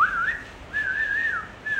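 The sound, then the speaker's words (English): A person imitates with the voice the warning whistle that lookout kids in an Arab neighborhood give when they see troops coming, three sliding, wavering phrases in quick succession, fairly loud, with no talking. “They see us coming. And they start whistling.”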